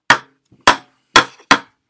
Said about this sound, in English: I'll try banging the spoon on the table.